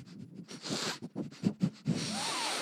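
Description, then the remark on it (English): A dog sniffs in a quick run of short, breathy bursts, with a few snorts mixed in, followed by a longer rushing exhale. “Sniff that.”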